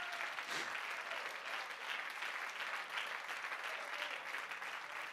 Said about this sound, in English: Come on, clap your hands unto the Lord and give Him praise.